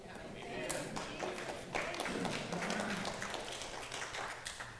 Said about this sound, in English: Like, I know 9 of you clapped.